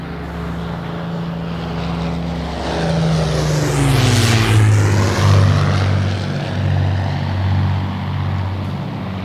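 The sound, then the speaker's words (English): Propeller bombers drone overhead, going over in waves high above villages, hills and streams, their low throbbing engine hum swelling to a loud roar midway, then dropping in pitch as they pass and fade slightly. No one speaks. “They're going over in waves and waves, high above villages, hills and streams, country churches and little graves, and little citizens' worried dreams.”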